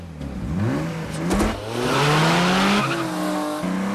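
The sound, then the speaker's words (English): A car engine revs hard and loud during a car chase, its pitch climbing and dropping through gear shifts, with squealing tires and rushing road noise in a fast, continuous burst. “another film that has a lot of car chases going on in it is Ronin”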